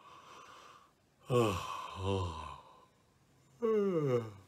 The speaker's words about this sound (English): Like a yawn. And if you do it good enough, you'll actually yawn, right?